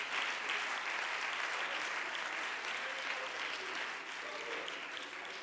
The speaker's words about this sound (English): Just thank him right now. Thank you. I wish somebody clap your hands right now.